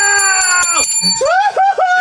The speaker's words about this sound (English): what do you got for a bell over there? Is that a legit bell? And it's a legit bell.